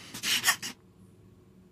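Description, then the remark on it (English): A quick flurry of computer keyboard clacking, several sharp keystrokes bunched together, then a pause and one last faint tap. No one speaks. “I hear keys clacking. I hope that's what you're searching.”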